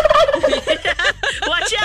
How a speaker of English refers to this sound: Watch out for the turkeys, guys. I just want to point that out.